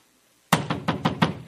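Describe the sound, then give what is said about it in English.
After a moment of silence, someone knocks on a door five times in a quick, steady rhythm. The raps are sharp and fairly loud, with a hollow, woody thud. “What you and I would do is we would go knock on the door.”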